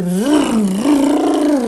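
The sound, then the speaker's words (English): A voice imitates a motorcycle pulling up, a loud, continuous droning growl that rises in pitch, dips, then climbs again over nearly two seconds. “But then you hear this motorcycle come up.”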